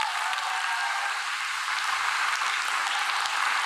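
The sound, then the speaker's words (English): An audience at a Tim Storey talk claps steadily for several seconds, a dense, even wash of many hands with no single claps standing out and no voices on top. “Clap your hands if you hear me.”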